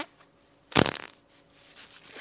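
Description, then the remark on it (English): A single loud, raspy fart bursts out, lasting under half a second before fading into quiet background noise; no one speaks. “take the temperature of how she feels about farts”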